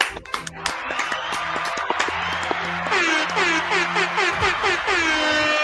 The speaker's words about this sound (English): Woo! Everybody, let's give us a round of applause for that one. Woo!